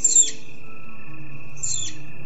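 Two short, high-pitched chirps of a flying squirrel sound about a second and a half apart, thin and faint against a quiet nighttime background of low hum, in the woods.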